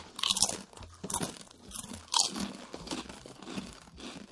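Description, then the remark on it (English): Crunchy Utz potato chips from a brown paper bag being chewed, a series of sharp, crackling bites and grinding crunches in an irregular rhythm, with no talking. “And let's just close out the episode with, like, chewing.”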